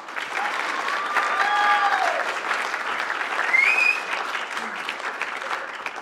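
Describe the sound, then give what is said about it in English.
A crowd claps steadily for about six seconds, a dense, even wash of applause with a few brief high whistle-like tones rising above it partway through. “This is so incredible, so let's give Corey a huge round of applause.”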